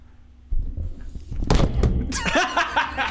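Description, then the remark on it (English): A heavy thump as a tabletop is knocked hard to make a Minion toy on it make a noise, followed a second later by a louder clattering crash as a microphone stand topples over, then people break into laughter. “I tried to knock the table hard enough that the minion will make a noise, and I knocked one of our microphone stands down.”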